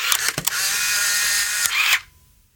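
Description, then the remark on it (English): A Polaroid SLR 680 SE instant camera shutter fires with a few sharp mechanical clicks, then a loud, steady motor whir runs for about a second and a half before stopping abruptly. “It's got an amazing, fantastic shutter sound.”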